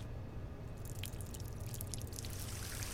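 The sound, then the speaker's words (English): Hot liquid pours steadily into a secondary container, a continuous splashing trickle that grows brighter after the first moment and runs on without a break. No one speaks. “Must not pour into a secondary container. Yeah, well, what's the worst that can happen at this point?”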